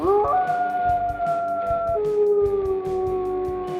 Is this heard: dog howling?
yes